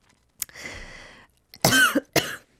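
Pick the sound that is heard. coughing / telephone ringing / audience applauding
coughing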